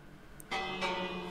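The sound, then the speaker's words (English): A bell rings out clearly, struck about three times in quick succession, each strike blending into a bright, sustained metallic tone that lingers, with no talking. “jump over that block and ring this bell.”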